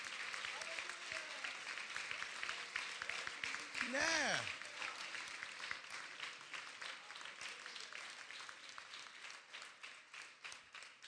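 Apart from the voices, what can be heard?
audience clapping hands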